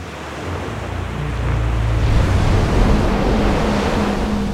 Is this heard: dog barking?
no